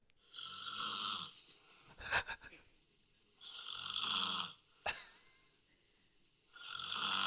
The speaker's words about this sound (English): Yeah, okay, so this is the girlfriend snoring.